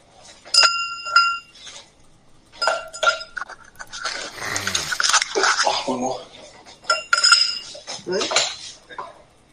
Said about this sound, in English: And in the glass goes some ice. And I'm dropping some pineapple chunks in as well.